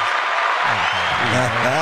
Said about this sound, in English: Can we get some claps? Can we get some claps for that?